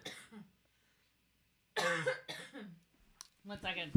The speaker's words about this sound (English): Did it make you cough?